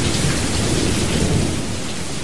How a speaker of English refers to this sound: A little downpour going on. It's going to rain on your head.